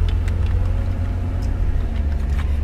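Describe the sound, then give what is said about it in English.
A steady low engine rumble fills the space, the muffled, constant hum of a car interior while driving, with one person alone in the car on a gorgeous, not hot day, faint ticking and small rattles above it and no one speaking. “I'm alone in the car.”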